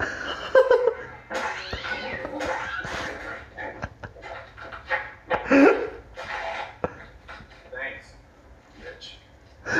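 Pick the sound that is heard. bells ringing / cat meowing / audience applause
cat meowing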